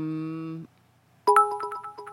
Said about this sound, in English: I should stop whenever I hear that sound, that magical sound of someone, what's the term, cheering us bits. Yes. In the bit jar.